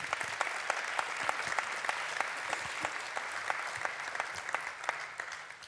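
An audience claps steadily, a dense rattle of many hands with sharper individual claps popping out, sustained for several seconds before tapering slightly at the end.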